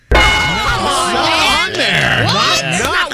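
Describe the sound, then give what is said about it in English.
Loud cheering and clapping from several overlapping voices, whooping and yelling with rising and falling pitches, bursting in suddenly and carrying on without a break for about three seconds. “Why are you clapping, …?”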